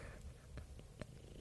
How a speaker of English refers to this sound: There's Cora, who is down here right now, and Custard is somewhere. Oh, she's purring right into the mic.